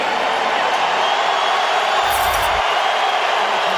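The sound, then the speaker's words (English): A stadium crowd cheers after a basketball game win, a dense, steady roar of many voices that holds at an even, loud level throughout without clear breaks, with a brief low rumble partway through. “Take a minute to take in the crowd right now.”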